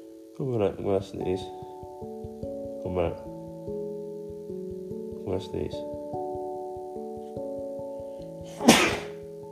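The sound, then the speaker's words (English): A single sharp, explosive, loud sneeze bursts out near the end, after a few short breathy vocal sounds at the start, with steady sustained tones humming underneath throughout. “I'm gonna sneeze.”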